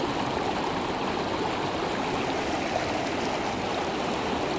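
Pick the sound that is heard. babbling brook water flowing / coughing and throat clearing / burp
babbling brook water flowing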